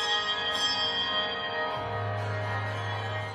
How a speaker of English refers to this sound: And now, listeners, a real treat, a performance by the Glasgow Handbell Orchestra. And FM turned it up to hear the bells ringing out.